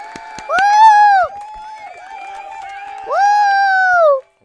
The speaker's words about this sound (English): I get a clap? Red Riding Hood. No, I can give you a clap.